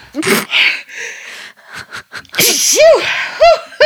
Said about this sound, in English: Excuse me. Whoa, this is... That was a big sneeze. Excuse me.